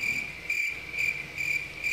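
Crickets chirp steadily in a continuous high trill that pulses in rhythmic waves, fairly loud against a quiet background, with no voices.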